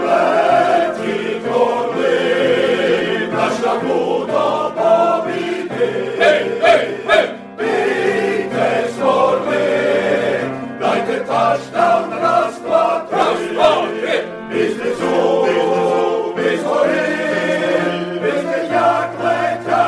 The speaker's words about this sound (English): I think it's one of the greatest fight song renditions I've ever heard. Take it away, boys.